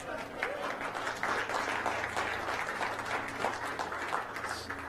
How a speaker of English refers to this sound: Does this make sense? You can clap. I like it.